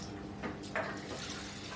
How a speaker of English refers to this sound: So, yeah, so get the rice, get some plenty of cold water on there. We'll use some of the filtered water. Very posh.